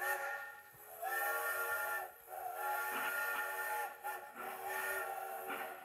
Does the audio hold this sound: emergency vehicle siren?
no